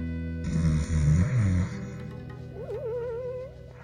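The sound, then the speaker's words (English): A loud snore from a man lying on his side some ways away: one deep, rattling rumble followed by a wavering, high whistle as the breath goes out, with no talking. “Some ways away, Antipa lay on his side, snoring loudly.”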